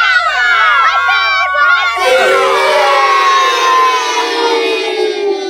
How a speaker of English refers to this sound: Okay, okay, calm down, children. We don't want to argue about it.